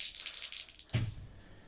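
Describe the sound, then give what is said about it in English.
Dice are rolled to face danger in a tabletop roleplaying game, landing on a 9: they rattle rapidly for almost a second, a bright clicking shake, then land with a single solid thump and a short, fading clatter across the surface. “Oh, but that is a 9 on the dice.”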